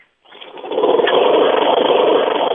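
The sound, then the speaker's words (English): A lawnmower engine revs up after a brief silence and then runs at a steady, loud, buzzing drone, with no voices. “This is Mark from Michigan, and I am a lawnmower listener.”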